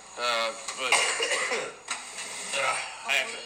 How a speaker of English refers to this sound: I can't get over this horrible cough. Last time you were here, of course. I know, last time you were here. Yeah. You had that cough, I remember. Oh, and it's back. That's fine. Maybe it's allergies.